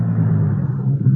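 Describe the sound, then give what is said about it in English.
A car's low engine rumble runs steadily as the vehicle rolls to a stop, a deep, heavy drone with no voices over it. “Stop the car.”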